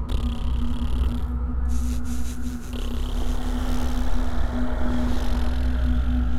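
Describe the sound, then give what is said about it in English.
A voice makes the call of the fog people, imitating the sound of fog: a steady, low droning hum beneath a broad, breathy whoosh that holds fairly loud and unbroken for the whole clip. “The call of the fog people imitates the sound of fog.”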